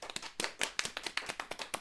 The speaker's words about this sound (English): All right, could we get a short round of applause for all of we summarizers up here?